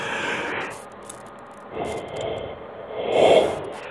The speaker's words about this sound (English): Mercy, them yawns are coming strong and fast.